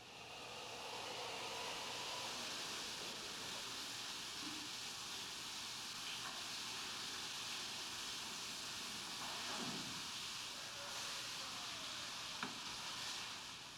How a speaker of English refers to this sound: We had to loop this scene because of all the shower noise.